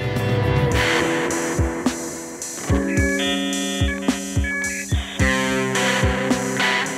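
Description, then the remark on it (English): Electronic music breakdown where dial-up modem tones, steady high beeps and warbling handshake chirps, ring out over punchy, evenly spaced drum hits and sustained synth notes. No voices are heard. “But the other like cool thing I like is the modem sounds and in the breakdown.”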